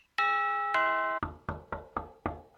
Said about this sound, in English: Who the devil can it be at this time of night? And why does our spaceship have a doorbell?